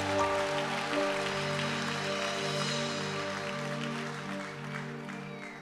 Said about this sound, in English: Clap your hands for the Lord if you believe.